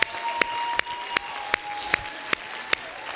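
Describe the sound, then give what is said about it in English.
A church audience, called by the preacher to stand and clap, claps its hands in a steady unison beat, about eight sharp strikes, over a wash of scattered applause and a sustained organ-like tone. “Clap your hands if you believe he's the baptizer.”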